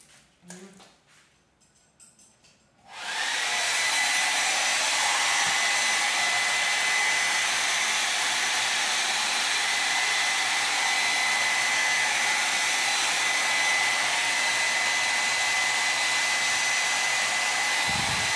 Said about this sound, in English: And now I'm using my Revlon brand blow dryer to blow dry the hair.